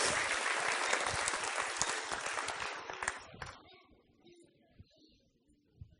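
A crowd claps loudly and steadily for about three seconds, then the applause thins out and fades, leaving a few scattered claps and quiet room noise.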